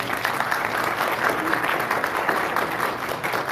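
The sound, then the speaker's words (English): An audience gives a hand clap for a man praised as a beautiful friend: a dense, continuous wash of many hands applauding at an even, sustained loudness, with a faint murmur of voices mixed in. “And I just want us to take a little time just to give this brother, this beautiful friend, a hand clap.”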